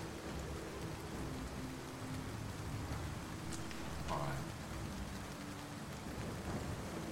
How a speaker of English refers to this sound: Who knows, but it's dim. It's, the sky is overcast and raining.